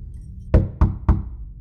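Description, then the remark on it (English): Three light knocks on a door at night in quick, even succession, each a soft wooden thud with a low, hollow body, alone with no voices. “pulled from a dream by the sound of three light knocks on her door.”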